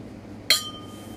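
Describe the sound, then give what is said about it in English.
A single bright, sharp clink of glasses touching in a toast, with a short ringing tail fading over a quiet background. “we should start with the cheers. Okay. Cheers.”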